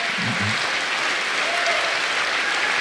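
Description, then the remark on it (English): A crowd applauds steadily, a dense, even wash of many hands clapping at a constant loud level, with a brief murmur of voices near the start. “Of course, they're clapping.”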